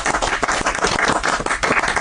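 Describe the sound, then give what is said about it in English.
A live audience applauds steadily for the announcement of a new app, dense overlapping hand claps forming a loud, continuous wash of noise with no voices rising above it. “Where was that applause during Porno Pest?”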